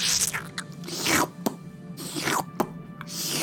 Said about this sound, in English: Yeah. So much slurpage. Gross. Gross, gross, gross. It's the popping sound that did it for me. I guess it's picking up its foot. Or maybe putting down its foot. Unclear.